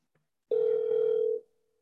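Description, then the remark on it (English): A telephone dial tone sounds as a steady, loud electronic hum lasting just under a second before cutting off, with no one speaking, as a phone call is being placed. “Let me call him.”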